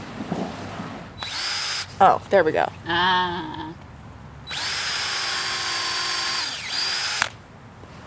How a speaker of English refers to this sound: This log is really hard. Yeah. I swear I know how to use a drill.